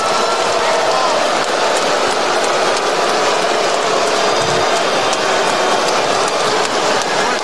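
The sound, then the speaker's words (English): A large basketball arena crowd roars with sustained booing aimed at Kawhi Leonard at the free throw line, a dense, loud wall of voices that stays steady from start to finish with no clear individual speech. “And they boo Kawhi Leonard.”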